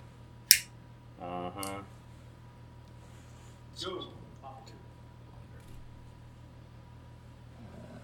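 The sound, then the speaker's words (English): A single sharp, bright click of a clothing zipper and metal buttons banging against a chair arm during a microphone recording, followed by brief voiced murmurs and faint rustling over a steady low hum. “However, I'm not usually concerned about how much sound my zipper makes banging off the arm of the chair.”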